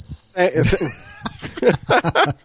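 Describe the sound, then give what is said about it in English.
A voice imitates a cricket's chirp, a thin, steady high-pitched trill held for about a second, with other vocal sounds mixed in and a few short bursts of voices following. “I actually made the sound effect of the cricket.”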